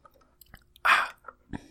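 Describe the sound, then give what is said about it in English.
Someone takes a drink of water: a few soft mouth clicks, then a louder wet slurping burst, followed by quieter clicks and a final short gulp, with no talking. “Yes, I do need to take a drink of water to prepare myself.”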